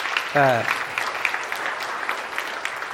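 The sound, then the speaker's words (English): An audience claps steadily for the full three seconds, a dense crackle of many hands, with a brief voiced shout or cheer rising over it near the start. “Round of applause for”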